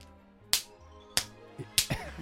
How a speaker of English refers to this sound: No, but she would have got the, you know, where you hold the belt on either end and then, you know, do a little loop and go whoosh.